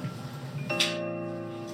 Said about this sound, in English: That's a thick ass clap.